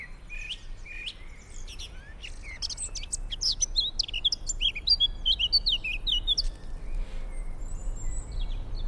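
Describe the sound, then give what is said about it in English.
Several birds chirp and trill in quick, overlapping bursts, bright, over a steady low rumble of traffic, heard from a parking lot. “I sat in the parking lot for a few more minutes after Magelli had driven off, listening to the birds chirp and the sound of traffic.”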